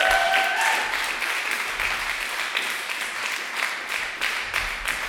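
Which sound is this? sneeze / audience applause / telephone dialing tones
audience applause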